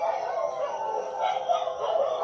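A dog howls in long, wavering, sustained tones that rise and fall, fairly loud and steady for the whole stretch, with no talking over it.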